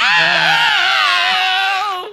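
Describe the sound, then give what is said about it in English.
Two voices scream together in a loud, high-pitched, sustained shriek lasting about two seconds, holding steady before cutting off abruptly. “They both scream.”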